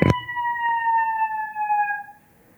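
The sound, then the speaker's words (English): A fire truck on an emergency run, another one following an earlier truck, sounds its siren loud and steady, the piercing tone sliding slowly lower in pitch as the vehicle passes, then cutting off, with a brief thump at the very start. “I think we have another fire truck coming. Emergency coming through.”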